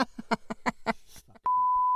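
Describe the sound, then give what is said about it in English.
Quick speech is cut off by a loud, steady censor bleep, a single pure tone that starts abruptly and holds to the end, covering a spoken name. “I'll beep that. Beep that.”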